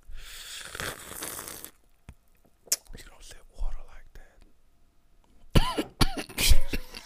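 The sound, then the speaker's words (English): Harsh, sputtering coughs after drinking something wrong, a raspy burst at the start, then scattered throat-clearing and several loud hacking coughs near the end, with faint breathy whispering between them. “Wrong pipe.”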